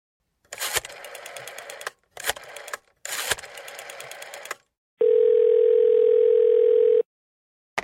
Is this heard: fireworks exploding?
no